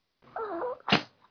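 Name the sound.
sneeze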